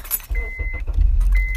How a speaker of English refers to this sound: For those people who do not believe that we're in a car, we're just making these noises up with the soundboard. You'll be wrong.